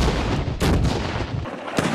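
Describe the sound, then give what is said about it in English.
Loud explosions from car bombs set off by authorities in an FBI bomb technician training exercise for police and federal agents: two sharp, booming blasts about a second apart, each bursting across the whole range, over a constant heavy rumble with no voices. “In this training exercise, authorities set off a series of car bombs.”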